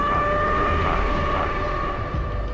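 civil defense warning siren

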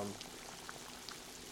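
water boiling

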